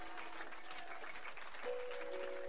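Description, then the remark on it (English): A worshipping crowd claps unto God steadily throughout, a dense, continuous patter of many hands at moderate volume, with a sustained musical tone entering partway through beneath it. “If you are clapping, clap unto the Most High God.”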